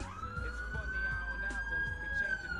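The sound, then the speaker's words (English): A police siren holds a long, steady wail that slowly climbs in pitch, in the background behind a low traffic rumble and faint murmuring voices. “Do you hear that siren in the background?”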